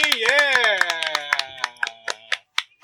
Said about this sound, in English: Like, now that we have, like, let's clap it up for the gold, man. 200, baby.